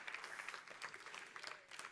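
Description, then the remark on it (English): An audience claps together during a service in a dense, steady burst of applause, many overlapping hand claps forming a continuous bright crackle with no voices. “We'll clap the rest of the service.”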